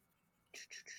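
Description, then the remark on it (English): Quick scratchy strokes of a pen across paper while a cartoon woman is drawn, three or four short hissing swipes in a row after a moment of quiet, fairly soft. “Like I said, I was a teacher for many years, and you got to learn how to draw and talk at the same time when you're doing that in particular, because you can't stop and draw, or that's all you'll be doing, and that's not really feasible.”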